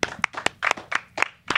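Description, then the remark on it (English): A group of people in a room claps for a guest in a short, uneven burst. Sharp, overlapping hand claps land in a loose rhythm for under two seconds, with no talking. “everybody in the room, clap for this brother right here, man.”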